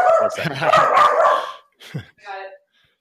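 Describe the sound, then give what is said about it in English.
A mini labradoodle barks in a quick burst of yaps, then gives a short bark and a higher, whiny yelp, loud with brief pauses between. “You got a guest appearance by your dog.”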